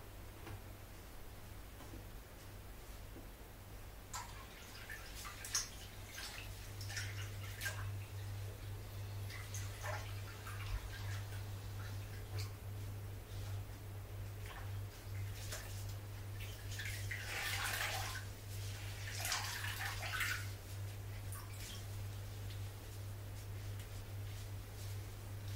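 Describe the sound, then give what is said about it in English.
Hot water is poured into a basin during a facial treatment in several splashy bursts over about twenty seconds, with a steady low hum underneath and no talking. “In the meantime, I will just make some more hot water in the basin and open a new cloth for me to wipe that away.”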